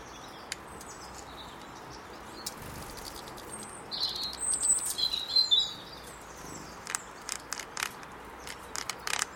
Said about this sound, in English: I think that rapping noise is the goldfinch on the Niger feeder. Yeah, tapping the side of the feeder with its beak. It's doing something, because then that feeder's got tiny holes to let tiny, tiny seeds out.